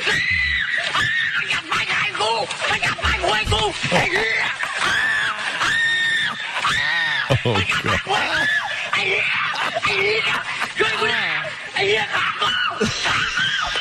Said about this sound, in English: he like pulled his underwear out and his friend stuck like a branch full of fire ants down his pants. Oh, and so dumb. The screaming is fantastic.